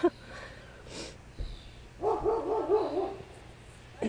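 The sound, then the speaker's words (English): Several dogs bark and yap in the background, a burst of overlapping barks in the middle with a few scattered ones before and after, moderately loud. “Hopefully you can hear me over those horrible dogs.”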